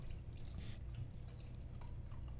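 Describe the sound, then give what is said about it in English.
Spanish wine pours into a cup with a steady, continuous liquid trickle and a few brief splashy bursts, heard alone without talking. “Did you fill your cup up, sorry? Yeah. Okay, I'll fill mine.”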